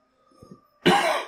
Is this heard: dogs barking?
no